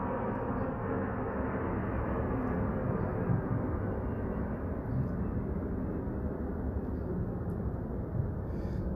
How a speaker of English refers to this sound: Excuse me, the plane coming over again. Give me a minute.